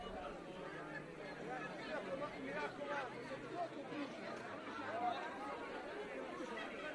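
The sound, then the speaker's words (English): A crowd at the crucifixion of Jesus, expecting his death, gives a steady murmur of chatter, many overlapping voices talking at once with no single speaker standing out, holding at an even, moderate level throughout. “Some of the crowd has dissipated, yet there seems to be an intensity as they're expecting the death of Jesus.”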